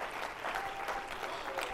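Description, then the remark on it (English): An audience claps their hands in praise to the Lord in a dense, continuous burst of applause, many overlapping claps blending into a steady wash of sound with no clear rhythm, moderately loud throughout. “Oh, I wish somebody would clap your hands and shout to the Lord with a voice of triumph.”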